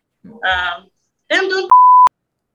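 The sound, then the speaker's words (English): A steady, loud censor bleep tone, covering mention of an event not yet announced, cuts in abruptly after two short bursts of speech, holding for about a third of a second before stopping sharply. “That event we just bleeped out”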